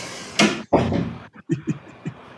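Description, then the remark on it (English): A door is pushed shut with a heavy thud, followed by a few softer knocks and clicks from the latch and handle, with no one speaking. “Okay, close the door.”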